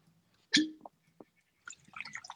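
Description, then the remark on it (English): A sharp clink of glass followed by a brief liquid splash and gurgle, then a longer stretch of bubbly pouring and trickling as whiskey is poured into a glass, with no talking. “I hear the whiskey being poured.”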